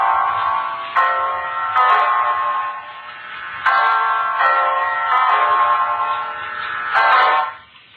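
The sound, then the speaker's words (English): A clock strikes nine o'clock with a slow series of resonant, ringing strikes, each tone lingering and overlapping the next, heard alone with no talking. “It's 9 o'clock, Mrs. Reeves.”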